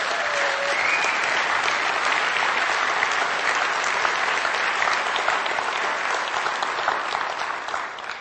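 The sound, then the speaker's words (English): A crowd applauds steadily for about eight seconds to congratulate John and Esther Berg on their 73rd wedding anniversary, a dense, even wash of many hands clapping that holds its loudness and fades slightly at the end. A brief whistle-like tone rises near the start. “Can you give them just a round of applause and congratulations?”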